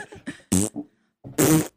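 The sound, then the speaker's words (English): Buzzy lip vibrations imitate a brass instrument mouthpiece: a few short sputtering pulses, then two louder, sustained flapping buzzes separated by a brief pause, with no talking. “we had to try out for different instruments and they had us try like the mouthpieces of different instruments. And I couldn't do like the trumpet, the tuba. It's not just blowing into it.”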